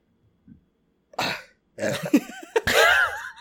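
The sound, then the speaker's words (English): A foamy, gurgling beer burp: a short harsh throaty burst, then a longer belch with a wavering, bubbly pitch, fairly loud with no talking over it. “It's a foamy burp.”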